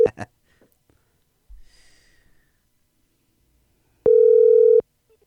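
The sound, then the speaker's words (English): A phone call being placed to Jason Gonderman of Truck Trend: a couple of short electronic blips, a few seconds of near quiet with faint rustling, then a single loud, steady ringing tone lasting under a second. “Well, that's super weird because I'm not your friend and I'm still going to call him.”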